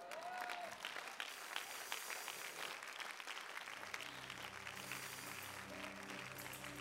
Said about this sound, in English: If you are clapping for Jesus, he just gave you something.